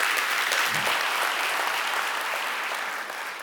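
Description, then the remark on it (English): An audience claps steadily for couples married longer than 18 years, a dense wash of many hands applauding at an even loudness that tapers off slightly toward the end, with no voices over it. “Yeah, give them a hand. Come on, let's clap our hands for love.”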